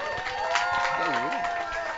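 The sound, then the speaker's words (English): A crowd at a live broadcast of Hennepin County Medical Center's Healthy Matters at the Minnesota State Fair, on a late summer day, applauds a doctor in a steady, dense wash of clapping that lasts throughout, with a voice briefly rising over it midway. “All right, little applause for Dr.”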